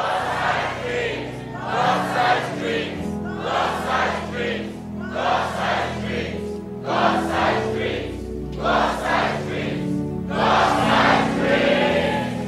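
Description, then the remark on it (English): A large church audience shouts the phrase "God-sized dream" in unison about seven times at a preacher's call, each loud, roaring burst coming at a steady rhythm over a continuous low hum of crowd noise. “Somebody scream, God-sized dream. I want you to shout it 7 times.”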